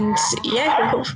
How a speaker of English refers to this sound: My dog just yawned. That's what that noise was.